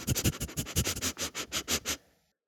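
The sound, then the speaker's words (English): A person on all fours sniffs at a piece of fur rapidly and repeatedly, about a dozen quick, breathy snuffles in a steady rhythm, like a wolf picking up a scent, then stops into silence. “As you are on all fours, as you start to sniff it, she holds out the fur to you to sniff.”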